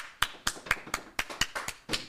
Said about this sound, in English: I just want to say, happy 3-year anniversary to the You Should Know Podcast. Round of applause for 3 years of You Should Know.